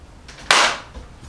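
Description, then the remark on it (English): A single sharp hand clap cracks out and decays quickly, bright and loud against a quiet background with no one speaking. It works as a sync marker. “Do the syncing up, nodding, two nods, and then we'll clap.”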